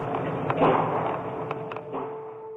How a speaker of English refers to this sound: The sound of gunfire was caught on a student's cell phone.